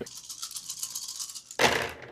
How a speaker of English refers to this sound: And this is going to be four purple dice. Four purple dice, and you make the roll.